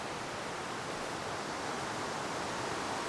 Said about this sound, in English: So I'm walking over now, and as you can hear, the current is really strong.